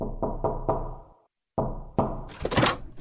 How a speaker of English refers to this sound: Then came a knock on the door.